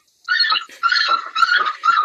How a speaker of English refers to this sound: Now the puppies are all stirred up.